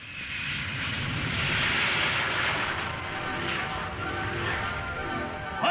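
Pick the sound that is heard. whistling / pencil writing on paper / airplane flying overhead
airplane flying overhead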